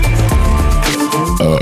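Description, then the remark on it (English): A loud, drawn-out burp rumbles for nearly two seconds, deep and croaky with a couple of shifts in pitch, and no talking over it. “Oh, belch fest.”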